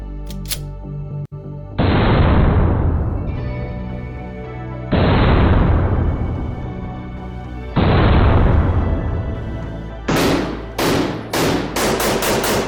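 Gunfire at the DCF Guns shooting range: three heavy, booming shots spaced a few seconds apart, each with a long rumbling tail, then a quick run of sharp, loud cracks. No one speaks.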